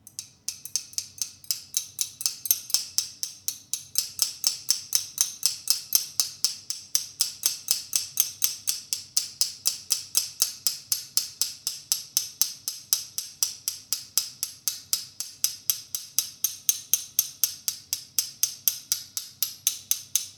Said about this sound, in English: This episode, I'm going to be demonstrating silverware as possible rhythm instruments. I'm going to start with a couple of spoons.